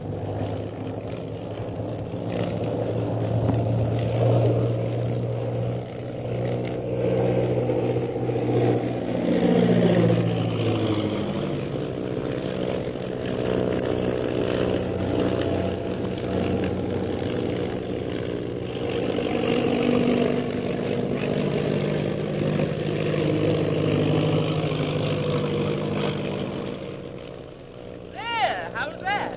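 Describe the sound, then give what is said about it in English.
A loud, steady airplane engine drones throughout as the plane, flying to Shanghai, evades a pursuing plane, its pitch swooping up and down as if the craft banks and dives, with indistinct voices faintly underneath. “I don't know that coming up on this plane with you was such a good idea.”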